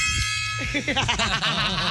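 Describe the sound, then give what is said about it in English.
A tiny, newly bought gong rings out with a thin, bright metallic shimmer that lingers and slowly fades as people start talking over it. “I got a gong. Oh, a gong. It's the gong it's I've the seen little, on Amazon. Tiny gong.”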